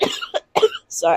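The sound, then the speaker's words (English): A loud fit of coughing: three harsh bursts in quick succession, the last one longer and rougher, with brief silent gaps between them. “Coughing.”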